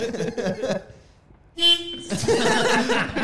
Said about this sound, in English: I won't do that. Please do not honk into the microphone. Cut that out. Do not honk in the microphone anytime, please.